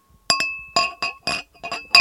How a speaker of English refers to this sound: Just pour it. You don't need to slap it against the glass.